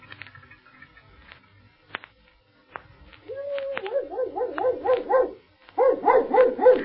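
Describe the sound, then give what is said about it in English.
A dog named Campo barks in quick, rhythmic bursts, a run of eager yaps, a short pause, then another volley, loud after a quiet opening with scattered clicks. “Oh, this is sure a swell dog of yours,”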